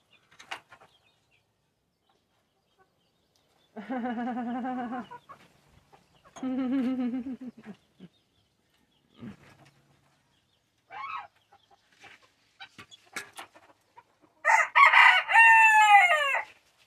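A rooster crows twice in drawn-out, harmonic calls, followed by a few scattered short clucks, then a loud, strained final crow. No talking.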